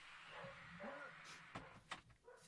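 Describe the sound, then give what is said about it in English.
A studio door is pushed shut with a pair of sharp thuds and clicks, preceded by faint muffled dog barking or whining in the background. “Forgot to close the studio door once.”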